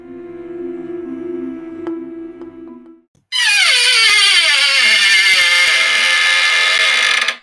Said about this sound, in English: Well, that's the... That's not the usual gong. No, that's an unusual gong.